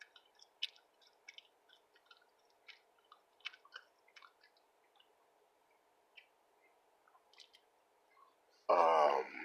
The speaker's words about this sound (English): I'm chewing gum. Listen to that.